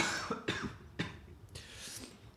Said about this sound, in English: I'm like dying. Hold on. This is not a COVID cough. He's been tested.